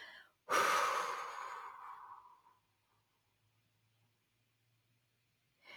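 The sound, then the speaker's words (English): A single slow, deep breath, the second exhale of a guided breathing exercise: a long, airy exhale starting strongly and fading over about two seconds, followed by quiet stillness and the faint start of another breath at the end. “Exhale a second time, getting rid of anything that doesn't serve you.”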